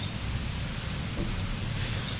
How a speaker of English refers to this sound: Aww, he's taking cover out of the rain.